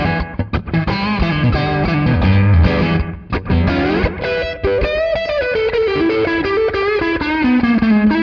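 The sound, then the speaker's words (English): A loud, distorted electric guitar plays a fast, continuous solo line with bent notes, thickened by a short, quick echo. No one speaks. “It's almost like an echo, but it'll just add some oomph to your solo.”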